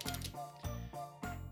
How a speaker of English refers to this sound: Let's get that good shuffle going on. We're getting low on the card count, so we'll find out what's going to work, what we're going to see this time.